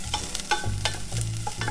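Corn sizzles steadily in a hot pan while a utensil scrapes and stirs through it, producing repeated short scraping bursts over a continuous crackling hiss.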